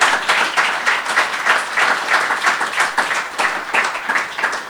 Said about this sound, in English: So a big round of applause